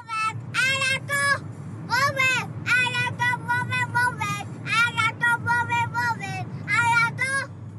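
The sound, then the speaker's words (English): Steady low engine rumble and road noise from inside a moving car, with a high child's voice babbling or singing in bursts over the drone throughout. “I got a text message from Marta as she was driving in the car.”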